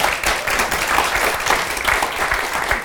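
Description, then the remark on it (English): A crowd applauds steadily for a guest artist being introduced, many hands clapping in a dense, even wash of sound that stays loud and continuous throughout, with no voices heard. “Can we give him a round of applause, please?”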